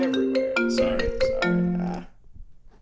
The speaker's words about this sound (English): Sorry about that. Sorry about what? Oh, there was a... Do what? Phone ringing on my end. Oh, you have a phone ring? Sorry.